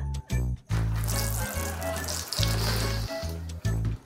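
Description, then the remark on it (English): A Tushy bidet sprays water in a steady hiss, with a low humming pulse underneath that swells and dips in a few uneven surges. No one speaks. “Give your back door lock the shower fresh clean it deserves.”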